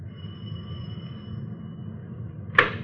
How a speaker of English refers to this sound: It was a small cottage on the back of the lot. The landlord occupied the house in front. We rang the bell to the manager's house.